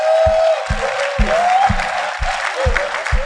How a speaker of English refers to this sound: Those of you who don't know, thank God for your life. Let's give those who don't know a clap of hand from the Lord.